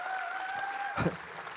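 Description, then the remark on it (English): An audience applauds for God in a steady, dense wash of clapping for under two seconds, with a faint sustained tone humming beneath it and a brief louder swell near the end. “Let's give God the biggest shout of applause in the house.”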